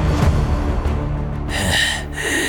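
heavy breathing

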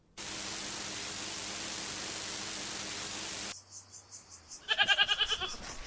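goats bleating

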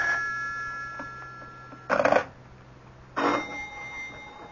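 telephone ringing

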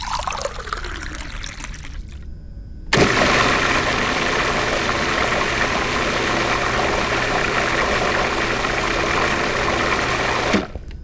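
blender running

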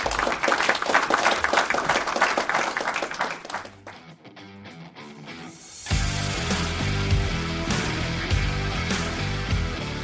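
audience applause

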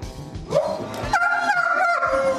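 dog vocalizing

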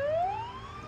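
ambulance siren

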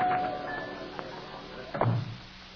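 door opening

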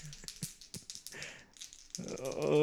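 dice being rolled

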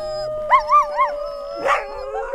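dogs howling

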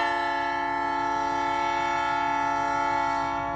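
train passing with horn

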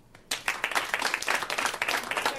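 audience clapping

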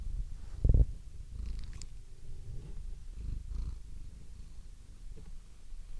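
cat purring

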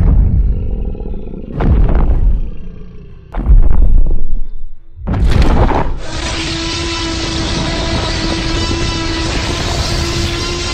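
loud creature roar

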